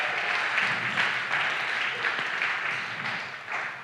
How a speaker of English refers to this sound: Let's give a round of applause to the interns. Come on.